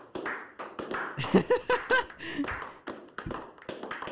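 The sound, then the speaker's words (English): A brief round of hand clapping from a few people, with sharp uneven claps over about four seconds and some faint voices mixed in. “Just giving you an applause. Yeah, it's a short applause”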